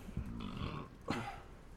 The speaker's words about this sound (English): That was a serious burp. I apologize.